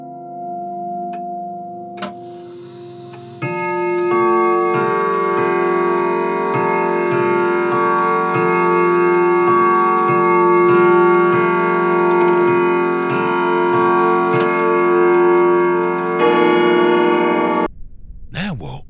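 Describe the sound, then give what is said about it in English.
A clock bell strikes over and over at a slow, steady pace, its ringing tones sustained and layered over a held musical backdrop before cutting off abruptly. “As the night wore on, Scrooge lay in a restless sleep until the bell began to strike.”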